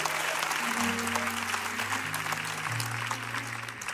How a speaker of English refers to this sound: Come on, give God a good hand clap offering. Hallelujah.